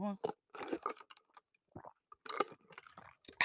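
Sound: sipping hot tea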